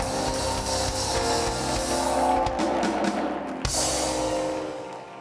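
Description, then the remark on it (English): A large crowd claps and screams loudly in a sustained, dense roar of cheering that holds steady for several seconds before gradually tapering off at the end. “Somebody clap your hands and scream.”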